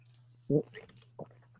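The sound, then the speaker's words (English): Someone takes a quick sip of a drink, with a soft gulp followed by a second smaller swallow, over a low steady hum and no talking. “Yes, get your sip on.”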